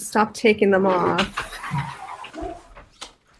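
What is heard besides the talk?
dog barking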